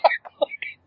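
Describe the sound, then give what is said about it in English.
A dog gives four quick, snorty bark-like bursts in under a second, moderately loud, sounding somewhere between a sneeze and a yap. “Okay, that's a dog.”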